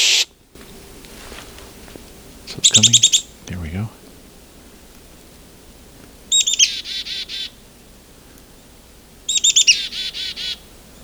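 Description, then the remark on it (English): A chickadee calls three times in the distance on Isthmus Bay Road, near Swan Lake Lane and the Forty Hills Road, each a couple of high notes followed by a quick run of buzzy dee notes, spaced a few seconds apart over a quiet outdoor background. “I'm starting to hear a chickadee in the distance.”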